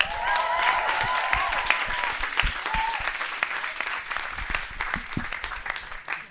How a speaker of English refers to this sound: So the first guy on our panel today is a rapper that played in the Rhythm Factory last night. Who came down to the Rhythm Factory last night? Great stuff. So make some noise and give a round of applause for ….